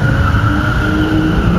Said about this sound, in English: The white SUV screeching from the scene, matching the description of the torched vehicle dumped in Surrey.